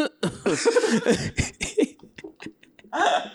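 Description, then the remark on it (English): A person vocally imitates an audience member's two-part cough, a short harsh burst followed by another, fairly loud, with some breathy laughter-like sounds around it. “why is it that particular cough? Like, you had to cough like that at that moment.”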